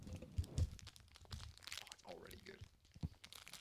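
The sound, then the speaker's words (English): The crinkly wrapper of a marzipan-filled chocolate horse being torn open and crumpled, a run of sharp crackles and rustles with a few louder snaps, while a person says a couple of words partway through. “So what you get out of this, I believe it's a marzipan filled chocolate horse. We're going to open it up.”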